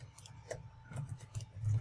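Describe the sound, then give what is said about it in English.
Dice in an on-screen physics simulation, thirty six-sided dice, rolling and clattering: a quick, irregular scatter of small plastic clicks and taps over a low background hum, fairly quiet, with no voices. “He's rolling dice. Like, it's like a Sean won. It's like a physics simulation.”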